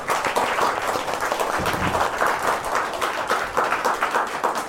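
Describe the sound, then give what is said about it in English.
A live show audience applauds Frankie Ward, many hands clapping in a dense, continuous patter that holds at an even, fairly loud level throughout, with no talking over it. “Also, round of applause for Frankie Ward, who's joining us tonight.”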